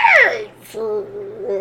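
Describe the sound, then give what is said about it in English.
A voice imitates a gnarled, screeching, grinding metallic sound: a shrill, high wail that slides downward, a brief gap, then a drawn-out, strained groan. “And you hear from above you a gnarled, screeching, metallic sound of...”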